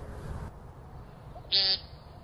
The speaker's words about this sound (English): P-E-E-N-T, pink. That's their mating call. Then they're going to fly up and around for a little bit. Their wings are going to whistle, and then they're going to land back down and paint some more and see if the ladies take notice.